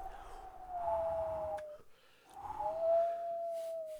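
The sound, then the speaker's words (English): A voice imitates whistling wind with two long, thin, howl-like tones, each holding steady then sliding slightly downward, separated by a brief pause. No one speaks. “I made a wind noise.”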